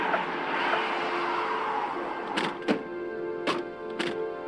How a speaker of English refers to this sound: I turned around and I heard the police cars swinging into my cul-de-sac. The noise of cars pulling into my cul-de-sac.